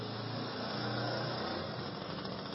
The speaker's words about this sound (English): It's a very loud, tiny little lorry.